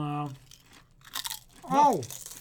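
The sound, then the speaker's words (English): A short, crisp crunch of a folded double potato chip being bitten, set between brief wordless vocal sounds, a hum before it and a rising-falling voice after. “I got the folded double one, so it's got an extra crunch.”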